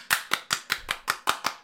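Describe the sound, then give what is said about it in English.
Hands clap eight times in a quick, steady rhythm, each clap a sharp, bright smack with no voices in between. “I was clapping my hands.”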